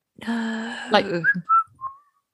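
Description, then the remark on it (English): Someone whistles a brief tune: a sustained breathy note, a sharp break, then three short, clear chirping notes in quick succession, fairly loud. “There was somebody whistling.”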